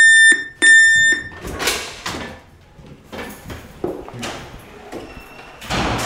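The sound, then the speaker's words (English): A harsh, high electronic door entry buzzer sounds twice, a short burst then a longer one, buzzing a visitor in, followed by loud clunks, clicks and rattling as a door is pushed open and moves. “Okay, just come up the flight of stairs after I buzz you in.”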